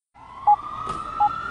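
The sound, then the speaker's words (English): An ambulance siren holds a steady, fairly loud tone, broken by two short, sharp beeps about a second apart, with no voices. “The ambulance is here.”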